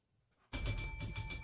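A loud bell starts abruptly and rings continuously with rapid, pulsing strikes, its bright metallic tone sustained with no voices.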